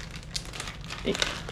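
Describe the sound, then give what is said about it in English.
Plastic Ziploc bag holding cough drops and DayQuil crinkling as someone is about to spit something out into it, in a steady run of crisp, irregular rustles and crackles, fairly quiet throughout with a few sharper crinkles near the end, no voices. “about to spit this out into my Ziploc baggie of my cough drops and DayQuil.”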